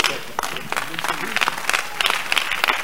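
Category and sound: crowd, audience clapping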